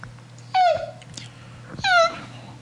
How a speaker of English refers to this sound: Sorry, that was me yawning for all you podcasters out there.